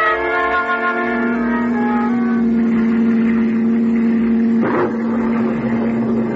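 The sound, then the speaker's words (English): A car engine drones steadily and loudly as the car races and swerves along a narrow cliff road in the English countryside in driving rain, with a rushing wash of road and wind noise and a brief swell of sound near the end. “You're racing across the English countryside, the rain driving against you as the car swerves perilously along the narrow cliff road.”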